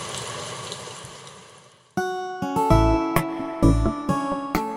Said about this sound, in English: I've just looked out my window. It's pouring with rain.